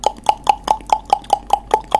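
A woodpecker pecks on a tree that has a door on it, in a rapid, steady run of about ten hollow, knock-like taps, roughly five per second, each crisp and fairly loud, sounding like someone knocking at the door, with no talking.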